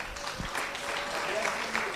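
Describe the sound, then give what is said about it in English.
A crowd bursts into sustained applause for the Lord, a dense, steady wash of many hands clapping with a few brighter individual claps standing out, and faint voices mixed underneath. “All right, let's clap for the Lord.”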